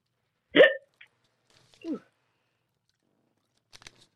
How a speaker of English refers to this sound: You know, we'll get rid of those hiccups if you watch the rap video that I'll send you of my show.